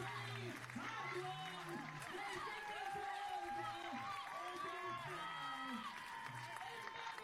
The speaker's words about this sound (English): What a save! Onto the crossbar. Gordon Banks style. Round of applause for that as well, ladies and gentlemen.